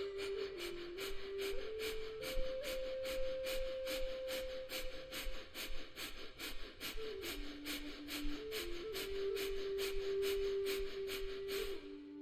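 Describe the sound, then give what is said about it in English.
Quick, forceful breaths in and out through the nose in a fire breathing exercise, a steady rhythmic huffing of two or three per second, continuing over a soft sustained tonal drone. “So breathe in and out quickly through your nose like this.”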